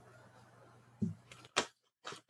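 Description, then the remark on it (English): Tarot cards being shuffled for a tarot reading, heard as a few quick papery bursts of riffling and slapping with short pauses between them over a faint low hum, and no one talking. “And I'm shuffling the cards now, as you can hear.”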